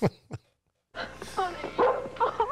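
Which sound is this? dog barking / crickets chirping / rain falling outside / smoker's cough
dog barking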